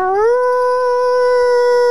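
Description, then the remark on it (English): A woman imitates a wolf howl: one loud, sustained, tonal cry that swoops upward at the start, then holds a steady pitch for nearly two seconds. “She does do a pretty good howl.”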